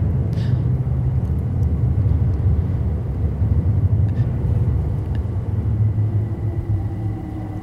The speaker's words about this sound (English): The train is beneath our feet. So that's the overground line that I was talking about that goes through there now. It used to be the East London line. That's exactly right, yeah. And on this big canvas here... Oh, here's another train.